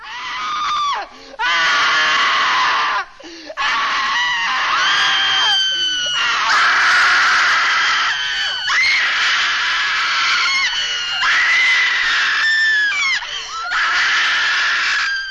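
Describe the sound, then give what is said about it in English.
Several voices scream loudly and shrilly in long, overlapping bursts, separated by brief pauses, continuing for about fifteen seconds with no other sounds; the screams come from disembodied heads in a film scene. “If you want to get an audience's attention, the best way to go is with random screaming disembodied heads.”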